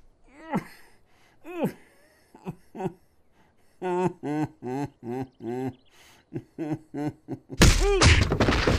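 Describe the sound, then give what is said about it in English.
A rapid series of heavy thuds lands in uneven rhythm, each paired with a pained grunt or groan, ending in a loud, harsh burst of noise, as a professional boxer throws punches at his father. “And since I don't expect to ever lay eyes on you again after tonight, I wanted to show you just how perfect I am when it comes to throwing punches these days.”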